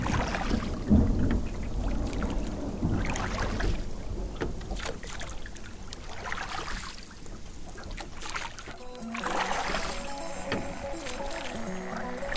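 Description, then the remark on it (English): Low, rolling thunder from an approaching storm rumbles, swelling and fading over a steady wash of water and boat noise, with no clear single crack. “Oh, don't be nervous about that. That's just regular when the storm come around.”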